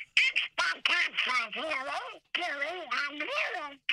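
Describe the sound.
Donald Duck's squawky cartoon voice jabbers in rapid, garbled bursts on a Disney phone message line, sounding thin and tinny as if coming through a phone, loud with a few brief pauses.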